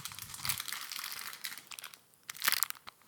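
A chocolate peanut butter, nut butter filled Clif Bar wrapper crinkling: dense, bright crackling plastic rustles come in irregular bursts, fading briefly near the end before a final sharp crunch of crinkles, with no voices.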